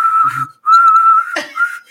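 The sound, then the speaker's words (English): Someone whistles through their lips in imitation of a football referee's whistle: two long, steady, shrill, loud blasts with a short gap between, with no talking. “I forget my football whistle.”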